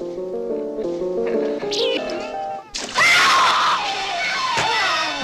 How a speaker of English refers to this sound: An unearthly shriek.